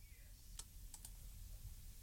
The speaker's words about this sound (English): Can you stop clicking your mouse like somebody with OCD? I was wondering why we'd gone quiet. I thought, oh my God, I'm so old now. I'm even creaking while I'm just sat down. And it was you. I thought it was my knee.